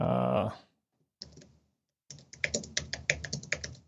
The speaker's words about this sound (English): What kind of keyboard is that? It's the one that came with my Mac. Thanks. It's like the Apple extended aluminum, whatever.